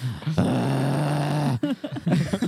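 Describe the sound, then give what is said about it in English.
A person lets out a loud, sustained guttural growl of disgust lasting over a second, followed by a few short, choppy voiced grunts. “Why are you growling?”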